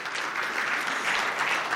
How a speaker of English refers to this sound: You guys should be the one getting the hand clap. You've had me for 13 years.